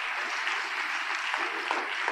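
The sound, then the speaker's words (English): A crowd of parents claps steadily, a dense, even wash of many hands with scattered sharper claps and faint voices mixed in, holding at a moderate level throughout. “Parents, you ought to be applauding on that.”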